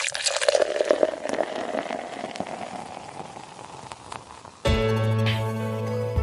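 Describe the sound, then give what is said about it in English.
Splashy pour of liquid into a glass for about four seconds, gradually quietening, then cut off abruptly as steady music begins. “So pour yourself a cup of coffee or get a glass of pomegranate juice or whatever, and let's join the conversation.”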